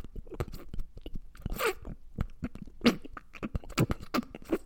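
Wet, open-mouthed chewing and lip-smacking, a steady run of sticky clicks and squelches with a few louder smacks, made by a person imitating someone eating noisily.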